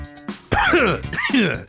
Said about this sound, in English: You all right? Yeah, excuse me. What's going on there? I don't know. Just coughing up on something.